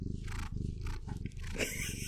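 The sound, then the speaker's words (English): A female cat named Stevie Wonder purrs steadily, a loud, low, rumbling vibration with a fast, regular pulse that continues for about two seconds without any talking. “Here's Stevie Wonder's gonna purr.”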